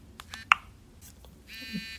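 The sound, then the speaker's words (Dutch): A Blindshell phone vibrating as it restarts after installing a software update: a few short buzzy pulses and a sharp click, then a steady rattling buzz for the last half second, fairly quiet, with no one talking. “Hij trilt, dus hij zal nu opnieuw aan het opstarten zijn.”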